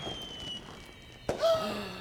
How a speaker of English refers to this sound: There they stood, looking at the fireworks in the distance. They looked like tiny explosions in the sky,